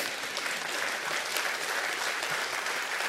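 People applauding a friend coming to know Jesus and being baptized, a dense, steady wash of clapping that holds at an even loudness for a few seconds without any voices breaking through.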